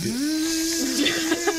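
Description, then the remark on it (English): A small electric car doing a burnout: a thin electric whine rises quickly in pitch, then holds steady over a hissing, scrubbing noise, with a few brief louder bursts near the end. “I mean, how about like, just think about this little electric car doing a burnout.”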